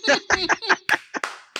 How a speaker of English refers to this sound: Here's me clapping you away on that one.